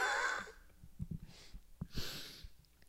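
Heavy, ragged breaths huff right into a microphone as a woman rolls around on a concrete floor with it, two or three loud gusts broken up by bumping and rustling handling noise, with no talking.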